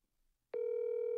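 After a moment of near silence, a steady electronic ringing tone of an outgoing phone call switches on and holds at an even, fairly loud level until the end, with no voices.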